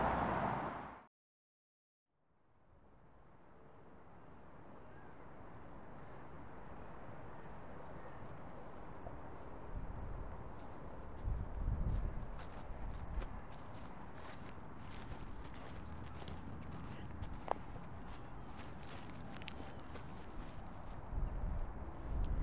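After a brief pause, a steady hiss of relentless drizzling rain in cold, wet weather rises and holds, peppered with sharp little ticks and patters, with soft low thuds like footsteps underneath. No one speaks.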